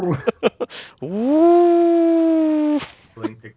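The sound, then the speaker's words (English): A person imitates an angry cat growl: a few short guttural bursts, then one long, loud, drawn-out yowling tone that holds steady before cutting off, followed by brief mutters. “Yeah, that's actually a Wookiee getting very pissed off at the Resident Evil remake. But an angry cat.”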